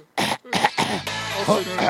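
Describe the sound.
A few harsh coughs and throat-clearing bursts in quick succession, loud and rough, ending in a sustained gravelly hack with some voiced grunting.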